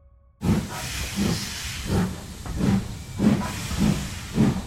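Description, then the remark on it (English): A steam locomotive hisses steadily while its engine chuffs in a regular rhythm, about seven beats, loud, with no voices. “This is the anniversary of the very first train trip back in 1804.”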